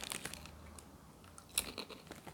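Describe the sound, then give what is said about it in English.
Crisp crunching of a crunchy chicken-flavored snack being chewed, with irregular bites and crackles over about two seconds and a sharper crunch near the end, no talking. “But either way, it's just like chicken, but it's really crunchy and it gets stuck in your teeth.”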